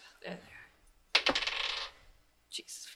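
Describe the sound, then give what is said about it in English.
Dice clatter and tumble across a hard tabletop in a quick burst of sharp clicks, settling after about a second, with a few lighter taps before and after, rolled for an insight check in a tabletop role-playing game. “Roll insight. Where did your dice go?”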